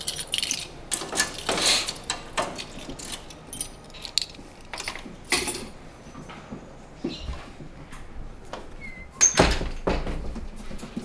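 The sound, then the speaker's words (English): A door swings shut with a solid thunk, followed by keys jangling and the click and clatter of a lock being turned, with scattered handling noises and no talking. “Need to lock the door.”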